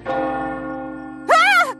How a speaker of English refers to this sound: It's only the town clock striking midnight, Percy. Nothing to worry about.